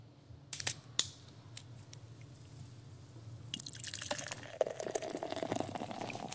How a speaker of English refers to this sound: All right, let's close this show off with pour us one more beer here, and we'll finish this thing out.